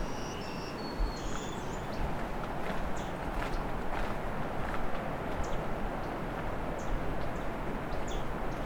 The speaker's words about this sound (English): Here's some ticking from a myrtle warbler.